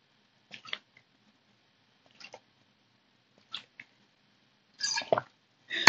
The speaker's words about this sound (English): Well, so far today, I can't open my water bottle. Just kidding, I lied. I'm gonna drink. Sorry.